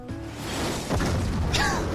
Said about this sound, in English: That last scene is an explosion, a missile hitting something.